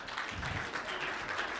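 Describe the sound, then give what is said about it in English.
A church audience claps for a panelist invited to the podium, a steady, dense, continuous patter of many hands at moderate loudness with no single claps standing out, running throughout without talk. “Please clap for him.”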